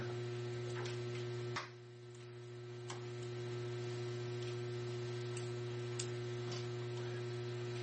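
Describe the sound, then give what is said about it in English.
A steady electrical mains hum drones throughout, with strong low tonal bands and a few faint clicks and ticks scattered on top; no one speaks. “So, yes, that's the humming.”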